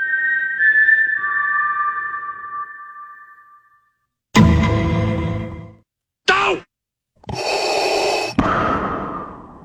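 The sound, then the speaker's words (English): The Mockingjay whistle from The Hunger Games: a short melodic whistle of four clear notes, rising and falling over a couple of seconds, followed after a pause by several loud, breathy bursts. “The Mockingjay whistle from Hunger Games.”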